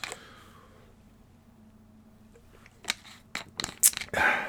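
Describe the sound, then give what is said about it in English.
Quiet at first, then someone sips water: a quick cluster of wet clicks, slurps and bottle handling noises, ending in a short breathy gulp. No one speaks. “For instance, let me take a sip of water.”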